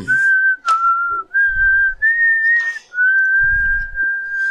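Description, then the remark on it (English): A person whistles a steady, sustained tune in long held notes with slight pitch shifts and brief breaths between, clear, with some low rustling and thumps underneath. “Who's whistling?”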